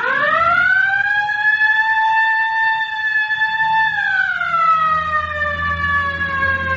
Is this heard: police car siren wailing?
yes